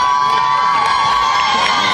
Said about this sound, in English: I'm trying to get the people in the balcony to stand up and yell. Come on. Doing anything. Yeah, come on. Make some noise.